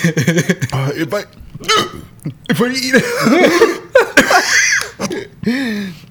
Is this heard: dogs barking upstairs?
no